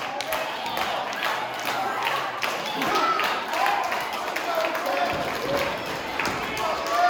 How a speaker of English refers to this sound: This crowd in Pinckneyville.